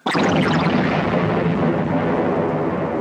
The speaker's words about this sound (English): So this next one is really weird, because what it's called in the book, ether explosion or space ether explosion. And let's listen to it and let's talk about what this sounds like.